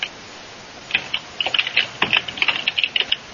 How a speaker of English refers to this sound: And we have the typing of keys.